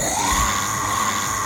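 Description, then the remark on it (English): A voice imitates an infected zombie's scream: one loud, raspy, sustained shriek that holds steady for over a second, alone, with no spoken words. “And then it starts to echo as you hear more and more of the infected scream”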